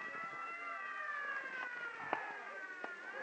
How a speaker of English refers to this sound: All right, clear the way, stand back. Clear the way for the ambulance. The ambulance.